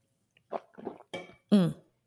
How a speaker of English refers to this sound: So for example, let me have a sip of water, hold on.